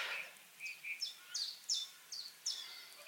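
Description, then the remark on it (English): Outdoor birdsong in a sunken lane through a stand of ash trees: a chiffchaff repeats a steady series of high, two-toned chirps, with a softer, lower, lazy summer warble from a blackbird just above at the start. Fairly quiet, and no one speaks. “You can hear the chiff-chaff, and there's a blackbird just right above doing that sort of lazy summer warble.”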